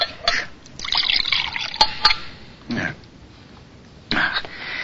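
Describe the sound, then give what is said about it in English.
Water is poured from a pitcher in a steady, gurgling stream lasting a couple of seconds, with a few sharp clinks and brief splashy bursts before and after, and no talking. “Say, would you mind bringing me that pitcher of water right there?”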